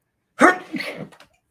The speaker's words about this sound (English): The sneeze coming. Where is it?